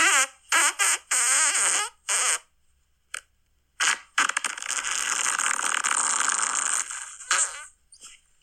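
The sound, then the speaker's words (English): A recorded fart sent in by a listener: a string of short, buzzy fart sounds sputters out in bursts, followed by a longer, drawn-out raspy fart that trails off with a final brief puff. Fairly loud, with no talking. “just message your name underneath your fart submission and we'll read it”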